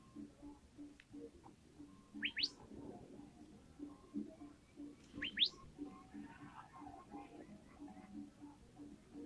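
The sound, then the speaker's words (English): Several ducks quack and chatter continuously, a busy overlapping babble with a couple of brief, high, rising chirps cutting through. “Quack, quack, quack, quack.”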